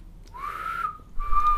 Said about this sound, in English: I can't imagine there's some people who just don't have the right shape lips to whistle. And it can't be all technique. What's there to do? Just blowing air through your fairly closed mouth, right?